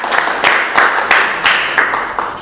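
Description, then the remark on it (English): An audience applauds to welcome two speakers, a dense, bright clatter of many hands with regular pulses of louder claps every third of a second, without any voices. “Okay, so maybe please join me in welcoming the two with a quick applause.”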